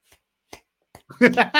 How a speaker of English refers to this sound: A very, very good slow clap.